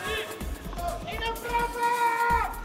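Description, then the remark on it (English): A restless tennis stadium crowd at Roland Garros, during the fourth set with Nadal leading 5-1 against Dominic Thiem, keeps up a steady roar of overlapping voices, with scattered shouts and sustained calls rising above the babble throughout. “Crowd just not settling here. They want more tennis for sure as Nadal gets ready to serve now.”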